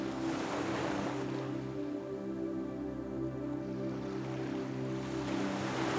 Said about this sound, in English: You can hear the sounds of the waves gently crashing on the sand. In and out. As the waves come and go, so does your breath.